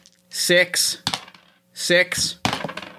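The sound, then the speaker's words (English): Five dice rattle and clatter in two quick rounds, each a bright shaking burst followed by sharp clicking as they tumble and settle, fairly loud. “Okay, I've got to roll 5 dice and get a 2.”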